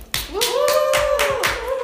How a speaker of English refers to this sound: We are now episode 9. Let's clap it up for that.